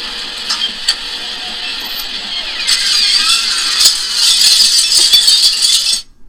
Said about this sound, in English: Man, but yeah. This is what the door sounds like. Right.